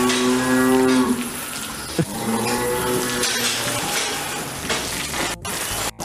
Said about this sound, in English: Even though no one is really talking in this clip, you do get a sense of how much cow shit this guy is swimming in, just by the sound. You can even hear cows in the background.